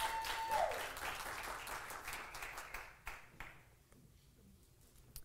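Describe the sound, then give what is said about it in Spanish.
An audience bursts into dense, steady applause that thins out after about three seconds, leaving a few scattered claps as it fades. “Dense un aplauso, se ven tan bellos.”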